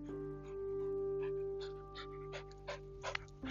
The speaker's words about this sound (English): And you may hear the panting of my dog approaching me.